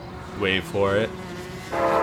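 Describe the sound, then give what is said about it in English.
A video game train horn blares in three loud blasts: two back-to-back honks, a brief pause, then a final sustained blast, over a low rumbling background. It comes from a train on the track of a kart race, approaching Wario and Donkey Kong. “They seem so smitten with themselves that they do not notice a train coming on the track.”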